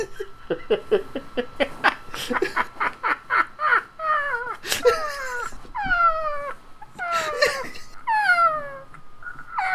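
A parrot squawks, starting with a quick burst of short, clipped calls and moving into longer, harsh, downward-sliding screeches, loud and unbroken by any talking.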